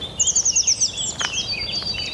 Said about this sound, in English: Some blue tits here, incredibly noisy, right in my ear.